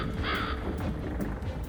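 A single harsh crow caw rings out briefly, rising over a steady low rumble of background noise that continues after the call fades.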